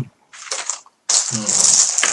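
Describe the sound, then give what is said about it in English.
Dice rattle and clatter across a hard table surface, a short burst followed by a longer, louder tumbling roll. “My dice.”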